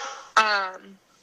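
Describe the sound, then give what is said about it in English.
A single sharp dog bark bursts out, loud and abrupt, trailing off quickly into quiet after a brief lead-in of softer sound. “it's only when I'm doing calls or lives that he barks.”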